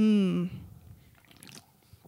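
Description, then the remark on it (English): A brief hummed vocal tone, then quiet sipping and swallowing of a freshly opened beer, a Lucis Naturales from Evergreen Brewing Company, with faint wet mouth sounds and a few soft liquid clicks. “Let's crack this open. Let's take a little sip.”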